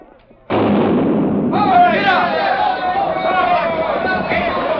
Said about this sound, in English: They're ready to fire the cannon. Clear the track!